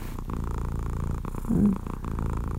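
A domestic cat purrs steadily while cuddled against a person's chest in bed on a cold night, a continuous low rumbling with a rhythmic pulse, swelling louder for a moment midway, with no voices present.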